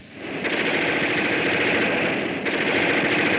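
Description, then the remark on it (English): Loud, sustained machine gun fire, the rapid shots running together into a dense, continuous rattling roar with no pauses and no voices. “I mean, that's a lot of gunfire right here.”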